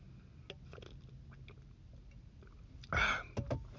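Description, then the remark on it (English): Soft mouth clicks lead into a short, louder slurping sip of water, followed by a couple of quieter gulps. No one speaks. “A lot of the companies, hold on, let me get a little sip of water here.”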